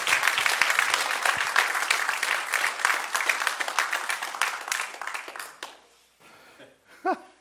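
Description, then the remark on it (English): A room full of people claps warmly for about six seconds, dense and steady, applauding a preacher as he is introduced, then the applause fades out, followed by a brief voice near the end. “And he's going to tell us probably more about Providence Rescue Mission and just give him a warm round of applause.”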